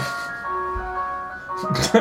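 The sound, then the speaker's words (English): A tinkling ice cream truck jingle plays steadily in sustained melodic tones from an arriving ice cream van called Drew's Cream Machine, with a burst of voice-like noise rising near the end. “Because the ice cream truck arrived.”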